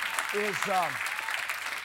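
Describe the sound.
A church audience claps for a pastor in steady, dense applause throughout, with a brief raised voice or cheer rising and falling over the clapping early on.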